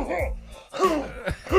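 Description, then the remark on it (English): A person gives a few short, voiced coughs to get the attention of a man who is cooking, rough and throaty, in quick bursts over about a second and a half. “No, next thing you know, freaking, I coughed.”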